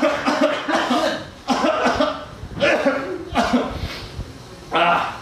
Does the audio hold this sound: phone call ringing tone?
no